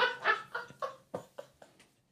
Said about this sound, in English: He's a fucking greyhound. He's going woof woof. He's an Italian greyhound.